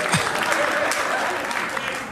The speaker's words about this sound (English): Clap for that. Clap for my wife.